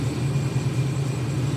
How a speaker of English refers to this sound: Uh-oh. We got another. Oh, now the truck's in here. That thing's gorgeous.